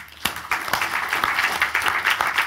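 An audience breaks into applause, a dense crackle of many hands clapping that starts abruptly and holds steady and fairly loud, with a few sharper individual claps standing out.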